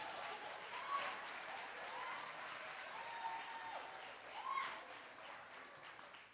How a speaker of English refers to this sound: How many of you ladies right here like a mighty good God man? Stand to your feet and clap. Go ahead.